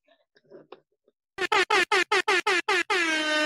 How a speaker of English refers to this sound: Where are my air horns?